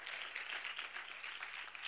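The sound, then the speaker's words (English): An audience applauds together, a dense, steady wash of many hands clapping at moderate volume, sustained throughout with no voices on top. “Even since I was born, come on, that's something to clap for.”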